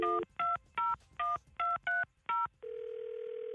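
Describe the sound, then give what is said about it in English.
A phone number is keyed in to call the caller's father: seven short, bright touch-tone beeps at a quick, steady pace, followed by a continuous, even electronic line tone that holds to the end. No one speaks. “We're going to listen in, and you call him right here, okay?”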